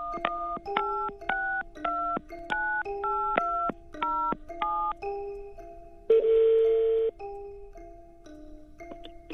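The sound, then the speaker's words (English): A rapid series of about a dozen touch-tone beeps as a number in Xi'an, China is dialed, followed by a buzzy ring tone and a steadier tone on the line. No one speaks. “Well, I called her up, but before I got her to read her morning story, I asked her if she'd give me a little lesson in Chinese.”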